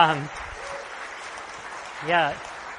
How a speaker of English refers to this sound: You can clap for that. It's great.